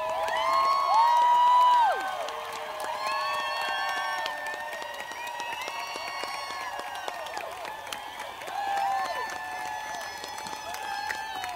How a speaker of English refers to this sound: I know I can see you. I can't hear you guys, but I can see you clapping. God bless you.